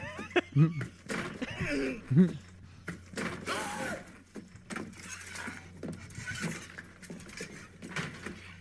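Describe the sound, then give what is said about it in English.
A heavy tow truck door swings shut with a solid thud as Vincent D'Onofrio's character gets out of the tow truck, amid metallic clanks and jangling, with a few short vocal grunts or laughs early on, moderately loud. “I like it when he got out of the tow truck. Yeah. It's the door.”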